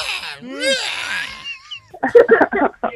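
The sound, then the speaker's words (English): A young child lets out shrill, pterodactyl-like screeches with wavering pitch for over a second, loud, in the background, followed by a short burst of talking voices. “Is that who's screaming in the background?”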